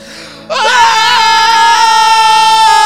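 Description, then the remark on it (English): After a brief quiet moment, voices break into loud, sustained yelling for a show segment dedicated to Hillary, a raw, high-pitched shout held steadily at full volume until the end. “So I think we should have a Hillary segment of the show right now where we just dedicate ourselves to yelling.”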